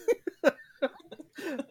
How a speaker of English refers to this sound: And she's like, right. What was that? She's like trying to cover it by coughing.